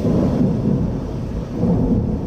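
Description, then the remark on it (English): A deep, continuous rumble of thunder snow during a lake-effect snowstorm near Buffalo, New York, rolls through, heavy low booming that swells and eases slightly without pause, loud, with no voices present. “And near Buffalo, thunder snow, as a lake effect mix of cold air, unpredictable wind, and snow clogged roads and towns.”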